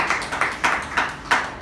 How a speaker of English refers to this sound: Let us give a big round of applause.